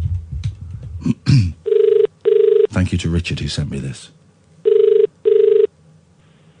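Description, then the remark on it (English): A steady electronic ringback tone of an outgoing phone call to Australia purrs in two double bursts with a pause between, clear on the line, after a man speaks briefly at the start. “I'm phoning Australia.”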